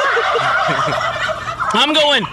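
A turkey gobbles loudly, a rapid warbling burst rising near the end, preceded by softer clucking and chattering calls from the bird. No one speaks.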